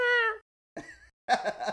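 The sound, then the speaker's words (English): People mimic cat meows with their voices: a drawn-out, tonal meow, then two shorter, rougher meow-like calls after brief pauses, loud. “We just made what? Fucking cat noises for 2 minutes.”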